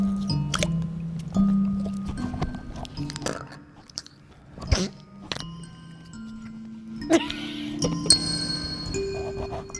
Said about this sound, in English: Whiskey gulp.